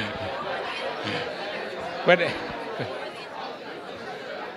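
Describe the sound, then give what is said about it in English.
A steady murmur of overlapping voices from a gathering crowd, with a brief louder burst near the middle and a single spoken word rising out of the chatter. “You see the crowd really, is gathering because they're obsessed with you”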